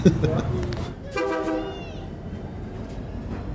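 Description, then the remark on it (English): A train horn sounds in one sustained, brassy blast partway through, loud, over a steady outdoor rumble, with faint voices at the start, from train tracks beside Jessica's taco truck in downtown Modesto, in the San Joaquin Valley. “Jessica's taco truck sits by train tracks in downtown Modesto, one of the many small cities that dot the dry, dusty San Joaquin Valley.”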